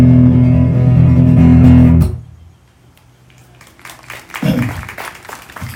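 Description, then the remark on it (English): A held musical note ends a sung religious song abruptly, then scattered audience applause rises, crackling, with a brief vocal whoop or murmur midway as the clapping grows. “lockdown has really made people desperate when they applaud for that.”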